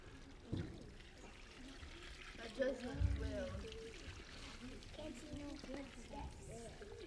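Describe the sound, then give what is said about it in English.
Water is poured onto sand for several seconds with a soft, continuous splashing trickle, while a group of kids and adults murmur and talk over it. “Now we're going to add some water.”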